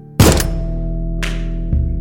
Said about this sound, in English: That loud noise had sounded awfully like a gunshot, and it had come from right outside her door.